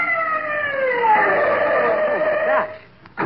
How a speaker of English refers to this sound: My gosh, what is it? It's an ambulance. Stopping here.